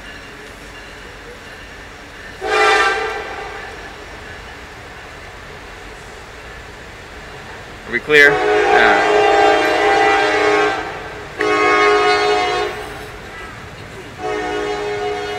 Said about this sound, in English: Oh, we've got a train. I'll hold on for just a second while that whistle blows.